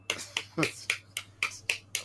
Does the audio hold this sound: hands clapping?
yes